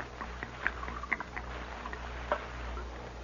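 Liquor glugs and splashes as it's poured from a jug into a cup, a few soft bubbly gulps over a low steady hum, quiet, with no talking.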